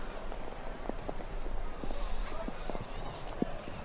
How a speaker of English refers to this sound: You can hear the raindrops splattering on our crowd microphone. It's been pretty steady,